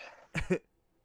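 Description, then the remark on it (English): A short cough made of two quick, harsh bursts back to back, fairly loud, followed by quiet with no talking. “I'm gonna cough.”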